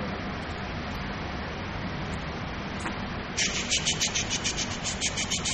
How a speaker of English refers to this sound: See? The water hose connected to the sprinkler.